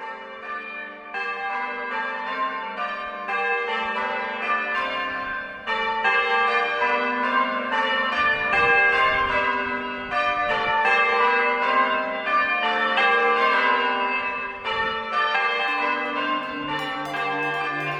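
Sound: church bells ringing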